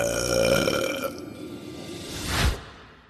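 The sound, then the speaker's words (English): A long, loud burp from Baba Butaba rumbles out with a croaky, drawn-out tone, then fades into a rising whoosh that swells and cuts off abruptly, with no talking. “And when Baba Butaba burps, well, strange things can happen.”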